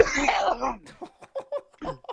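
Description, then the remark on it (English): A harsh, forceful cough to clear phlegm from the throat bursts out, followed by a series of short, wheezy hacking bursts and throat-clearing rasps in an uneven rhythm. “I'm gonna give it one serious hack here.”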